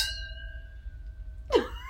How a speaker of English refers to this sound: That was a weird sound. It's still, well, my glass was still ringing and I tilted it and the water moved.